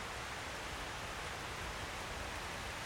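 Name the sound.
rain falling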